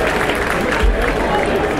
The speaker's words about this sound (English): We've got a green light. And there they go. You can hear the crowd roar. Everyone stands up.